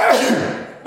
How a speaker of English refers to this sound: We'll have to edit out that sneeze. It's so loud.